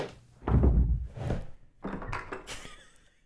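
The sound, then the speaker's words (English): A heavy thud of a man tripping, followed by a second bump and a brief scuffling clatter as he stumbles, with no voices. “tripped as he was...”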